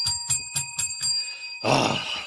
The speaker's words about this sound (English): Well, hey, ring the daggum bell, will you?